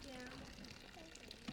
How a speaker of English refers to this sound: So what I'm going to do is I'm going to run some water in here.